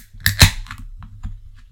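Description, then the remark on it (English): A can of a drink with peach, pine and passion fruit tasting notes cracks open with a sharp double snap, followed by a brief, faint fizzy hiss that quickly fades, with a low hum underneath. “Oh, it makes a satisfying fizz.”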